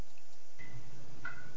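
Two quiet water drips plink into a shower about half a second apart, each a short, ringing droplet note over soft background hiss.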